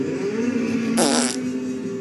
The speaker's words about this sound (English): Sorry, I farted. Oh. But at least I'm sexy. It was a sexy fart. It was such a sexy fart. For my sexy butt.